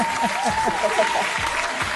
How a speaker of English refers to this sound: A wonderful, wonderful round of applause.